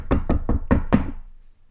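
Five firm knocks on a door in a quick, slightly accelerating rhythm, fairly loud, followed by a brief fading resonance and then quiet.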